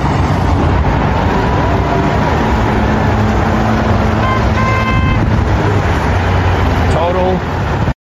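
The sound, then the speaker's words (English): Car horns honk through a dense, constant roar of blocked traffic and crowd noise in Seattle, with one sustained horn blast midway and a shorter tone near the end, voices blending into the din. “Total blockage of traffic.”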